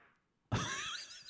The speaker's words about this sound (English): I think the mic got farted, that. Dude. I think the mic got that. That fart was dope. I don't know. It's kind of a weird sound. It smells real bad.